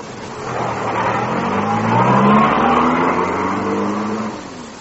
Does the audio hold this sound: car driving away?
yes